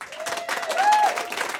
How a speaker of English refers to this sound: Clap louder.